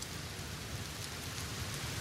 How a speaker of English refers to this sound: The soundscape is a thunderstorm. The binaural beat will be alpha range for relaxation and increased positivity.